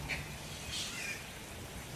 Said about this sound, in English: The world seems to slow down. The sounds of the raindrops filling the air and blocking out the noise of the world.